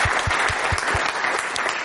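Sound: audience applause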